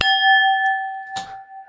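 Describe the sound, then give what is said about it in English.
A crisp tap on a genuine Irish Galway crystal wine glass rings out with a clear, sustained pure tone that hangs through the whole moment, briefly interrupted by a second soft knock near the end. “Genuine Irish crystal glass, given to me by my employers”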